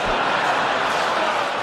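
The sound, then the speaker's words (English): Applause from members of Congress, mostly women raising their hands and clapping during a speech by President Trump: a dense, steady wash of many hands clapping at once, loud and even throughout with no pauses and no clear individual claps standing out. “Mostly women in Congress raising their hands, clapping.”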